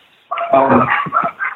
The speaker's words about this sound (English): I'm sorry, there's a lot of dogs. Don't let that dog bite you, please. I'll walk away from the dog.